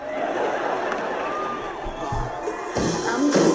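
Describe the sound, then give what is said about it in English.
A crowd cheers and shouts for the Van Atta Middle School dance team as the girls dance, a steady, loud wash of overlapping voices, with a few dull thumps and brief whistle-like tones rising through the din. “And of course, the crowd is cheering.”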